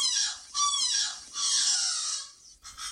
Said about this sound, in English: Practice calls. Okay, so they're just messing around? Yeah, they're messing around. They're developing their repertoire. The juvenile birds can play with their vocalizations for a few years sometimes before they get the full adult expression of calls